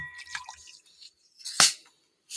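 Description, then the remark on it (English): Liquid splashes and gurgles as it is poured into a glass, followed by a short pause, one sharp splash or clink, and a quieter trickle at the end. “Glasses. All right. Put this over here. I'm pour this in here.”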